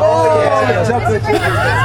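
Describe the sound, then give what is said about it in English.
A crowd reacts with overlapping gasps and murmurs to the President answering that he ordered chocolate chip, many voices rising in pitch together over a steady, loud babble of chatter that runs the whole time. “There is literally a gasp from the crowd.”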